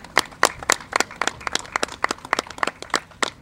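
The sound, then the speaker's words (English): A small audience in Buffalo claps in a light, scattered round of applause for the city's police, fire, public works and parking commissioners, the sharp hand claps coming quickly and fairly steadily, moderately loud, with no talking over it. “police commissioner, Captain Rogowski, our fire commissioner, William Rinaldo, our Department of Public Works commissioner, Nate Martin, and parking commissioner, Raymond Wagner, who are here with us today, and we can give them a round of applause.”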